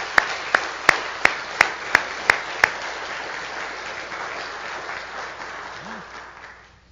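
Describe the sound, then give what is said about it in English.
A large audience at First Baptist Church applauds graduates steadily during a morning service, with a few sharp, loud claps at the start, then the dense clapping slowly fades out toward the end. “Let's give these guys one more round of applause this morning.”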